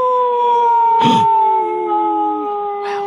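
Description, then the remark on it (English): A werewolf howl sound effect holds a long, steady wailing tone throughout, loud, with brief noisy bursts crashing in near the start and end. No one speaks. “He's there. The To Be Werewolf is proud that we watched Terror at Red Wolf Inn.”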